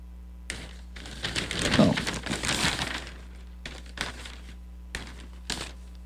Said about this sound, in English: Lots of sound of crackling of newspapers. Yes, I went to the recycling box today, dropped off some, picked up a few newspapers from last week. So, yay, have some newspapers to crackle.